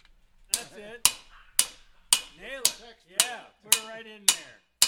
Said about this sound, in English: cheering on a newcomer who's learning how to pound out a metal feather on an anvil. This is eighth-inch steel that we're making a tail feather out of